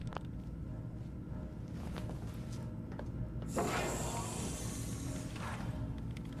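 A glass door slides shut with a smooth, hissing whoosh lasting about two seconds, over a steady low hum. It is moderately loud, with no voices.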